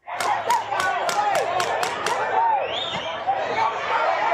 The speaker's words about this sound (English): The police shooting death of a black man inside his own apartment in Dallas grew tense overnight. A Dallas Morning News journalist captured an officer firing what appeared to be a pepper ball gun into the crowd.